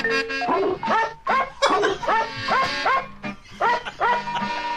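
Edited dog barks pitched into a melody, a novelty record made with primitive editing techniques: short, bright woofs strung together in a quick, bouncy rhythm over a steady musical backing, loud.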